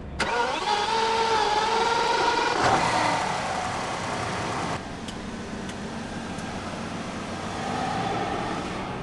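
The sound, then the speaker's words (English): A hydrogen-powered car's internal combustion engine, starting in hydrogen mode, cranks and catches with a sharp burst near the start, then settles into a steady, mid-pitched idle hum with a few light clicks, and no one speaking. “And what it does, and you see it with this little indication here saying H2, it starts always in the hydrogen mode, right?”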